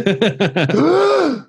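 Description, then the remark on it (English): A voice imitates a gasp: four quick, sharp catches of breath followed by one drawn-out, voiced exhale that swoops up and back down, fairly loud. “So I did a totally involuntarily gasp.”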